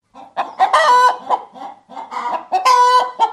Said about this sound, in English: Do we need some hen sound effects here just in case?